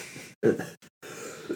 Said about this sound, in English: But anyway, sorry about the cough there.